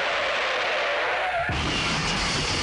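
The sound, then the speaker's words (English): A loud car sound effect with no one talking: a harsh, hissing rush like skidding tires, joined about halfway through by a deep engine rumble that carries to the end. “Don't play the car.”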